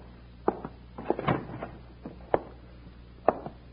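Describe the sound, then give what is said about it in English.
A door to one of the front rooms of a hotel is opened indoors with a series of sharp clicks and knocks, including a brief rattling bump partway through, moderately loud, with no voices. “Here's the door to one of the front rooms. You stay behind me. I'll take a look.”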